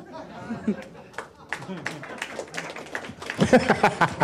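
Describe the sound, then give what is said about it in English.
Scattered, hesitant applause from an audience, building into denser clapping toward the end, mixed with crowd murmuring and a few chuckles. “I love that applause was like a lot of people don't know what just happened.”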